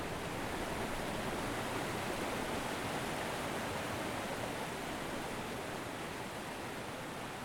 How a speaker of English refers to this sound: On the last leg of the journey, away from the roar and trickle of the river and its adjacent streams, I walked towards a small birch forest with a breeze and a steady stream of people going the opposite way to the waterfall.